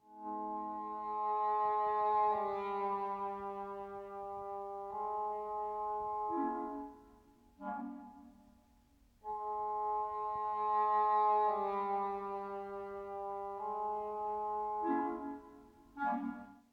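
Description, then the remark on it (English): Orchestral music from The Ring for Alberich's transformation into a toad: dark, sustained low brass chords shift slowly, then sink into murky lower notes, and the whole phrase repeats a second time. No voices. “We won't hear the toad music again”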